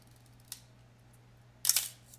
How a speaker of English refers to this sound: I'll like make the shutter slow so you can see it open too. Yeah, that's the shutter.